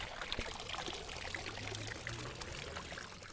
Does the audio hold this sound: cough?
no